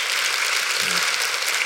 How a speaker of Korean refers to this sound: 예, 큰 박수를 부탁드릴게요.